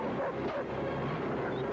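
A dog barks and yips in a dense, steady burst lasting under two seconds, fairly loud, with no clear gaps between the barks and no talking over it.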